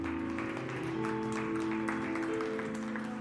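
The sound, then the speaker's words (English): An audience gives God a round of applause after a prayer, many hands clapping in a dense, continuous crackle, with sustained low keyboard or organ tones holding underneath throughout. “Just give God a round of applause.”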